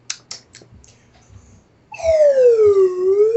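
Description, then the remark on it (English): A few sharp taps and clicks, then a loud slide whistle sounds a sustained tone that glides steadily downward in pitch before curling slightly back up at the end. “Get the slide whistle ready.”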